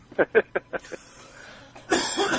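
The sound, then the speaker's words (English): A quick run of five coughs that fade as they go, followed by a louder, rougher burst of throat noise. “No, I'm going to have to do something with that cough.”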